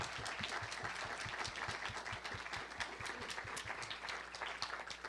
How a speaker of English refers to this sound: So thank you. Thank you. Let's have a big round of applause for our panel this evening.